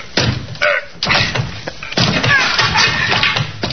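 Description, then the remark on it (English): A locked wooden door of an absent tenant's room is rammed with a shoulder under a police search warrant: two or three heavy thuds in steady succession, then a louder splintering crash as it gives way and bangs open. “Left his door locked. Name of Marsden. Well, is that so? Just as well we have the search warrant. Try your shoulder on that door”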